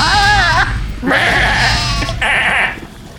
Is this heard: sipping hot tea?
no